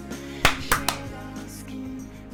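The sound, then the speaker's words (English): Three sharp hand claps in quick, uneven succession, the first loudest, used as a sync clap, followed by a low steady hum with no talking. “I just said I got something before we did our sync up clap, and then that's what I came up with.”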